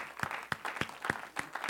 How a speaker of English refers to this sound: If you want to be seated, clap your hands unto the Lord one more time.